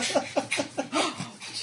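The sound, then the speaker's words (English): A dog pants rapidly, right against the microphone, a quick steady rhythm of breathy huffs about five per second, loud and airy with no talking. “Yeah, are you against that ear again, dog?”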